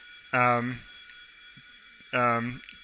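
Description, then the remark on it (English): A fire alarm sounds in two short, loud buzzing bursts about two seconds apart, with a steady faint hum in the background between them. “There's a fire alarm, but hopefully, sorry.”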